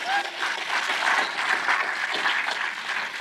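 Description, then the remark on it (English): Steady audience applause for a band, a dense wash of many hands clapping at an even, fairly loud level for a few seconds with no one speaking. “So let's give them a quick round of applause.”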